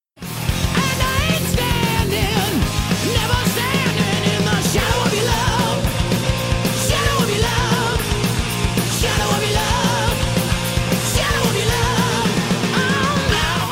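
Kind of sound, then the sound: hard rock song playing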